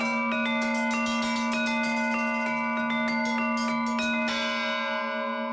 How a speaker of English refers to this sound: The Harmonic Canon is the name of the piece, but it's also the name of this huge bell, which is made by a bell maker called Marcus Verget.